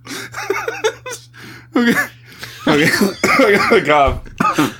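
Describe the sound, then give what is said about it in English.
Several loud bursts of coughing and throat clearing come in an uneven series, mixed with breathy, laugh-like vocal sounds over a steady low hum. “I don't want to fucking hear you cough, man.”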